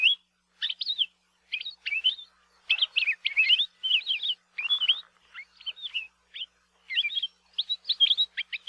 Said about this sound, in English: One of the grad students in our lab at UH Hilo is currently studying the vocalizations of the Palila and has found they have an incredible variety of songs and calls. Here are just a few.